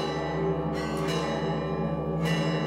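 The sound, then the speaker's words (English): Loud church bells of the Holy Sepulchre clang continuously, signalling that it is time for one Christian group to take its watch, their rich overlapping tones ringing out with fresh strikes landing every second or so, no voices present. “The bells signify it's time for one group to take its watch.”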